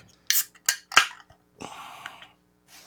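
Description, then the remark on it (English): A can of Lancaster Brewing double chocolate milk stout being cracked open: three sharp metallic clicks from the tab, followed by a bright, steady fizzing hiss lasting under a second. No one speaks. “I'm going to go ahead and crack this one.”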